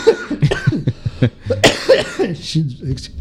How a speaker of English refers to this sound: Excuse. Ah, sorry. That's all right. You good? Yeah, all good. Coughing, just thinking about it, you know, it's choking me up.